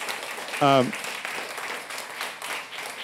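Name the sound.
audience applause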